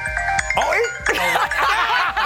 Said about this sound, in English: Let's see if Perk picks up. Oh, you're calling him?